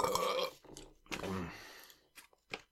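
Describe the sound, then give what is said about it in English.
A short, low burp rumbles into the mic, framed by wet mouth and chewing noises, with no words spoken. “That wasn't a satisfying burp.”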